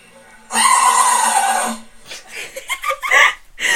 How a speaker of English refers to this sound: Pomeranian puppy sneezes, and it has almost 11 million views. And basically, it's a Rooks, the Pomeranian, a really cute fluffy puppy, does an epic sneeze.